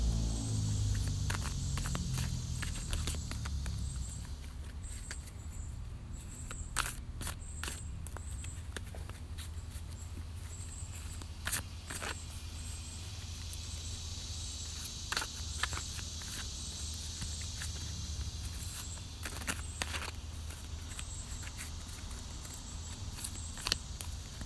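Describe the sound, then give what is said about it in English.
A deck of chakra cards being shuffled: soft papery flicks and taps at an irregular pace for about twenty-five seconds, with a faint steady high-pitched hiss underneath and no talking. “I just be zoning out when I be shuffling these things.”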